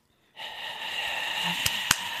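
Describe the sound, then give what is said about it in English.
A voice imitates a radiator heater going while someone sleeps: a steady, breathy hiss that starts abruptly and holds for about two seconds, broken near the end by two short, sharp clicks. “You are fucking sleeping and the radiator is going...”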